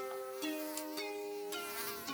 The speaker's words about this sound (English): Oh, there's the mosquito again. Just when things are getting interesting.